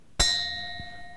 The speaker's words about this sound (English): was awakened by the sound of a church bell tolling 1 o'clock.